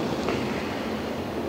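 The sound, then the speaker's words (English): A steady wash of ocean surf at Point Lobos, a dense, even hiss of breaking waves with no speech, holding a constant level without distinct individual swells. “Oh, look, we've reached the ocean.”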